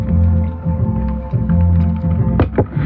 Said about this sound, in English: Poured myself another drink. It's time for another drink.